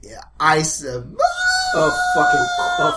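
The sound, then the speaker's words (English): After a brief bit of talk, someone vocally imitates a distant scream coming from the treetops about 100 yards away: a long, steady, high wailing cry held for nearly two seconds while another voice keeps talking underneath. “on the top of the trees, you hear suddenly a scream.”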